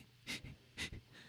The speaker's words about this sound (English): Something I'll feel good to take deep breaths. Right now I'm like breathing shallowly because I'm